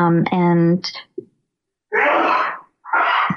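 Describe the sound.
A man sneezes: a rising voiced intake and sharp burst, then after a brief pause two more loud, breathy, spraying sneezes in quick succession.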